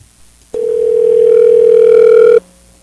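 A telephone dial tone as a call is placed to a show's gadget guest: one steady, unbroken mid-pitched hum that starts abruptly, holds evenly for about two seconds, then cuts off. No voices are heard.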